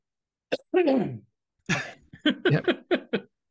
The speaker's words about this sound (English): Hold on, and then you coughed.